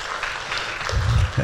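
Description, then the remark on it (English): An audience claps in a steady, dense patter for a second and a half, with a low voice murmuring underneath toward the end. “I'm glad y'all clapped, because I was going to cry.”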